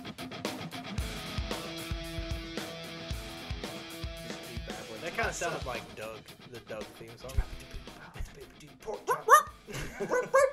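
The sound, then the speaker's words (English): A person mimics a dog's barking and yelping, a few short bursts over a steady musical background, with chuckling voices joining near the end. “You said you made the dog sound.”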